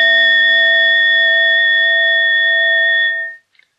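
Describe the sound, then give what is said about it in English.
A struck gong rings out with a steady, bright metallic tone and layered overtones, holding for about three seconds before fading away, followed by a couple of faint taps. No one speaks. “So, for instance, the phenomena that appear with this gong.”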